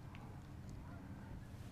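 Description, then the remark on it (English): A few faint goose honks from a small flock flying away, scattered over a steady low rumble of background noise, with no one speaking. “So that little flock of geese that flew away.”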